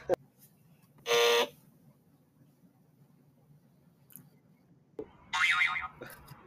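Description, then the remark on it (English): Two loud, harsh quiz buzzer blasts, each lasting under half a second, ring out a few seconds apart over a low background hum after a contestant's answer, like a game show's wrong-answer buzzer. “I like the buzzer after the answer.”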